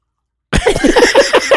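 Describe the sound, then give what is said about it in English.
After a brief silence, someone takes a loud slurping sip of hot tea, a breathy, sputtering draw of air and liquid lasting about a second. “Are you drinking plain water? No. Maybe. Basically, that's what tea is.”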